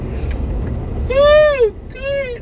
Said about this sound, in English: I am exhausted, as I said before, and I am stuck in traffic. I am so sick and tired of, you know, this is the reason why I moved to a small town, so I could avoid traffic.